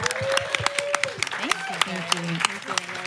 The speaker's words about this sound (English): A quick round of applause for everybody, huh?